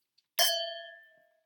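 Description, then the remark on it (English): A single bright clink of glasses touching in a toast, leaving a clear, high ringing tone that fades away over about a second. Nobody speaks. “Should we have a little cheers?”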